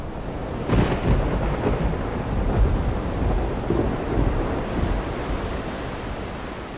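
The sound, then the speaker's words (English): A thunderstorm at the start of an afternoon England football match rumbles steadily, with a sharp crack near the start giving way to deep, rolling thunder over a constant wash of heavy rain and wind. No voices are heard. “There had been heavy rain overnight, and the game began in a storm that wouldn't let up until half time, and you could clearly see surface water on the pitch.”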